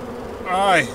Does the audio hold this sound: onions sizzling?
no